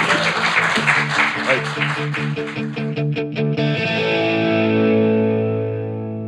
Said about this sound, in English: a wonderful round of applause, not just for this chat, but for this festival.